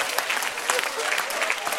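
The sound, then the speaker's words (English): An audience claps hands in a dense, steady burst of applause, many overlapping sharp claps blending into a continuous crackle at moderate loudness, with no talking. “You can clap your hands better.”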